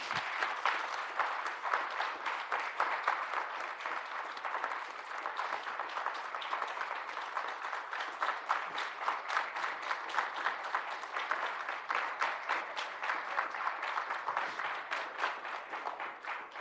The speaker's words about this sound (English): I can't believe that we were able, as a group, to pull this off. So please give everybody a round of applause.